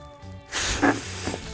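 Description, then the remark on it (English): After a brief hush, a steady rush of breath blows into a surgical glove to blow it up like a balloon, a loud airy hiss lasting about a second with a faint squeaky tone popping through midway. “Blowing up a surgical glove like a balloon.”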